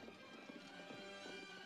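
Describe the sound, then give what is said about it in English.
A group of many horses clip-clopping in a steady, overlapping rhythm of hoofbeats, fairly quiet, with no talking. “Lots of horses.”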